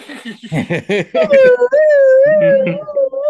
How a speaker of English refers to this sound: Let me get that siren